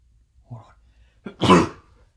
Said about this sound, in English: Really? I had to sneeze.